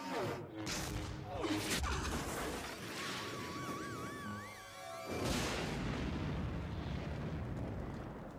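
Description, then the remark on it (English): Loud, dense pyrotechnic movie explosions rumble and crackle continuously, with sharp bursts near the start and middle, while a high warbling whistle rises and wavers over the blasts. “The explosions of this movie are tight. Yeah. This is pyrotechnic shit.”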